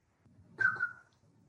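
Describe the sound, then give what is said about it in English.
A shrill whistle made with the fingers, imitating a car alarm: one sustained tone, dipping slightly, lasting about half a second over a low muffled rumble. “Hey, man, you just made a car alarm noise with your finger.”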